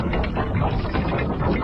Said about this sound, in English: And she motions down to something inside the keep, and the doors begin to, like, slowly creak open.